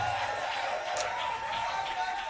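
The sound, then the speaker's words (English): A church crowd claps and cheers for Uncle Ato as he leaves, in a steady, continuous wash of applause, with indistinct voices mixed into the dense noise throughout. “Clap, clap, clap as Uncle Ato is leaving.”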